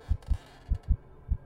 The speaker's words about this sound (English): And you hear your heartbeat slowing.